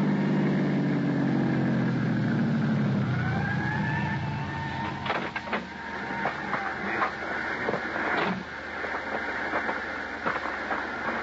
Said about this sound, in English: Thanks to an ambulance that pulled away from the curb and headed south toward town, I found a parking space.